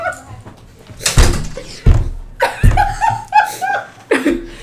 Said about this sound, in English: Okay. Why is it not closing? Close the fucking door, yo.